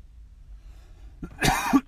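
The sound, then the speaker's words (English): A short cough burst with a throaty, raspy quality, rising quickly after a quiet moment and ending with a slight throat-clearing rasp. “Sorry again for the coughing.”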